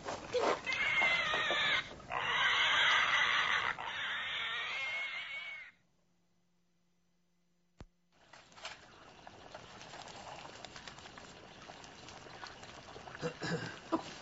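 Loud, shrill squeals of pigs being killed for butchering fill the first few seconds in harsh overlapping bursts, then cut to near silence and a click before a low, steady outdoor rumble with scattered knocks.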